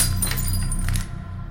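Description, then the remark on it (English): A dropped jar smashes and bursts into pieces, bright clinking shards scattering for about a second over a low rumbling bed before the noise drops away. “It broke then, the face of Nepothes shattered into many pieces.”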